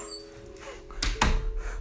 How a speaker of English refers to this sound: So that was my dog. I apologize. Anyways, that was fucking hilarious. My dog just came in and started wrecking the place.